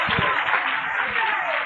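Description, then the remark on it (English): A crowd claps its hands in praise of the Lord for victory, a dense, steady wash of applause that holds at an even, fairly loud level through the short clip, with no distinct single claps standing out. “Come on and clap your hands and praise the Lord for victory.”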